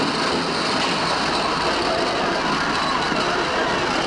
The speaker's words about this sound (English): As we begin, we get a sound before the lights come up, reminiscent of perhaps a subway train.